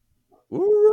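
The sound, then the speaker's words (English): A dog lets out a faint short yip, then launches into a loud, drawn-out howl that rises and holds steady, with no one talking. “Whose dog? Mine.”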